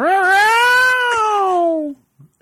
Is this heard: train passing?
no